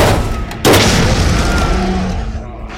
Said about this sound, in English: That's quite a wallop! Because he ran into a wall? Not exactly stopped him, though, has it?